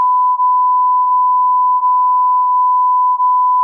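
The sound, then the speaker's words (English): A continuous mid-pitched censorship bleep tone, covering a spoiler about an old movie, runs steadily for several seconds, loud and unbroken, with faint small dips along the way and no audible talking. “You're going to beep it.”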